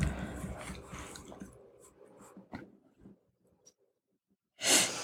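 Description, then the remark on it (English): Wet nasal sniffling and snorting from allergy-season sniffles: a few short, irregular sniffs amid soft rustling, ending in one louder, longer sniff. No one speaks. “Get all my sniffles out of the way from allergy season.”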